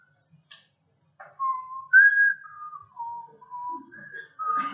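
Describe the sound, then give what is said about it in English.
A person whistles a short, wavering tune of several sustained notes, clear, with a few faint clicks and rustles around it and no talking. “No, I didn't know if you were wowing at my bad whistling.”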